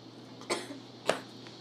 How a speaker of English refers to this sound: We're all choking. Oh no!